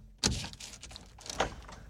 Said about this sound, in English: That's the vault door. What's inside?